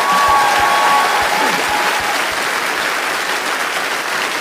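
A large audience at a Jeff Allen comedy show applauds steadily after a mention of a son serving with the 101st Airborne at Fort Campbell, Kentucky, a dense wash of clapping that stays loud throughout, with a few brief whistles cutting through early on.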